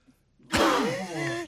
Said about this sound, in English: Massive sneeze there. Yeah. Well, I'm allergic to Rory McIlroy or something, like you said.